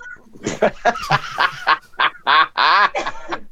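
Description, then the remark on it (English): A flock of ducks being fed quacks and honks in a rapid, overlapping series of loud, nasal calls, bunched close together with a few longer drawn-out honks near the end. “Uncle's out there feeding the ducks.”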